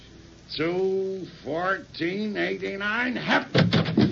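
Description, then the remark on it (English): A door creaks open with a series of drawn-out, wavering squeals from the hinges, ending in a louder, rougher rattle as it swings wide. “Open it”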